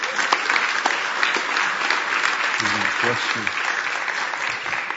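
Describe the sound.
A crowd applauds steadily, a dense wash of clapping that stays loud and even throughout, while a man's voice briefly speaks over it midway.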